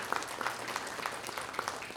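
A crowd applauds steadily to honour Christian teachers, dense overlapping claps forming a continuous wash of sound with brief sharper accents, fairly quiet and with no talking over it.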